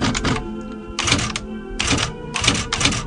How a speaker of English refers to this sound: types his diary in two perfect columns down sheets of 11 by 14 inch paper